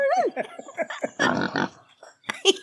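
A pig oinks and squeals, a rapid run of short grunts followed by a longer, rough snorting grunt, then a few more sharp squeals after a brief pause.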